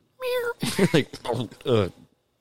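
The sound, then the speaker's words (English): A person does a high, drawn-out meow imitation, then breaks into quick voiced sounds, fairly loud, lasting about two seconds. “Do you have a bunch of kittens in your coat pockets?”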